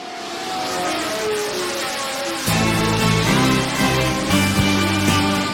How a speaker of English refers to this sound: he's holding this little mic as the cars went by. And that's the sound that you hear in the beginning of the song